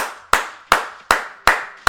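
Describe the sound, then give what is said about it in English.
Five sharp, loud hand claps in a steady, fairly quick rhythm, each a crisp snap that fades briefly before the next, with no talking. “Made for somebody's church, because those claps are loud.”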